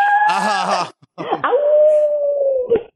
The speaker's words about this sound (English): because that wolf or dog, I don't know what that was